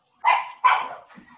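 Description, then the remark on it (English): A dog named Bear barks twice at the doorbell in quick succession, loud, each bark sharp and ringing, followed by a softer, trailing rustle of fainter sound. She jumped and fell off a chair. “She heard the bell ring and jumped and fell.”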